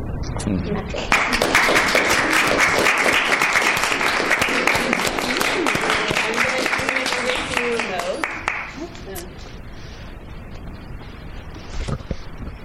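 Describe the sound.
An audience bursts into loud, dense applause that holds steady for about seven seconds, then drops away, leaving a few scattered claps and faint murmuring voices.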